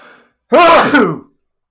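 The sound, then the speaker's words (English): A soft breathy intake, a short pause, then one loud, drawn-out voiced sneeze with a wavering, almost sung pitch, heard on its own. “Sneezing's lovely, isn't it?”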